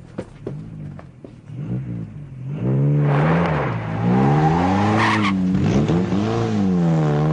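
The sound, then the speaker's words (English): A car engine revs hard and rises in pitch as a woman drives off at reckless speed, with tires screeching loudly over the roaring motor, sustained for several seconds. “She's going like crazy. She'll kill someone.”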